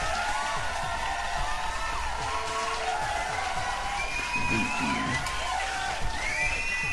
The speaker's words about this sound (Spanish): ¿Cómo chingados no? Un pinche aplauso.